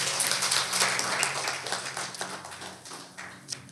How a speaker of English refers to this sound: That was a clap that was like reserved for the Atlanta Hawks. You know what I mean? Like, it felt like that.